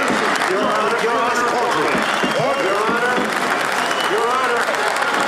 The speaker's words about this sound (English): The cops are all cheering in the background, so they obviously they have the support of these officers in blue behind the defendants.